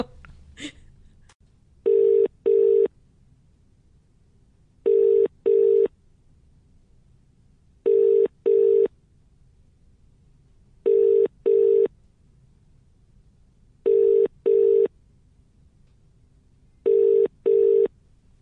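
A telephone ringback tone on an outgoing call: six evenly spaced double rings, each pair of steady mid-pitched tones separated by a few seconds of quiet, with a brief click at the start.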